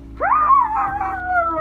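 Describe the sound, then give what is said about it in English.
A man's voice imitates a dog's howl, a single drawn-out wavering cry that rises sharply, then slowly falls and fades, loud with no other talking. “And that's not a dog, that's my voice.”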